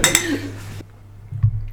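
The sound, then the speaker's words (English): Glasses clink together in a toast, a bright ringing chime that lingers for most of a second before cutting off, followed by quiet and a soft low knock. “Oh, cheers. Cheers.”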